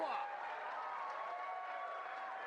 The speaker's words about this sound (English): You get the crowd standing up, clapping like it's fucking golf.